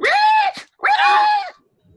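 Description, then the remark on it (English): Two loud, shrill screams in quick succession, a strangled, squealing cry like a pig's, the second drawn out longer before it cuts off into silence. “So cries a pig prepared to the spit.”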